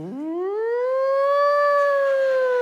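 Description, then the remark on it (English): A siren wail sweeps upward and holds at a steady high pitch, loud, with no voices. “And it had a wheel bearing out in the left rear wheel so that when you drove down the road, it made a siren sound.”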